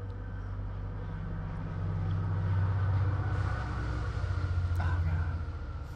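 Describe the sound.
A train rumbles steadily with a deep, continuous droning hum that swells slightly midway, like riding inside a moving railcar, with faint muffled voices beneath the noise.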